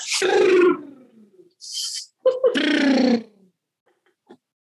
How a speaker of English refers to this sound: Now, what I have my clients do is put your hands on your shoulders and rub them down to your elbows and blow your air out like a cartoon character. It looks like this.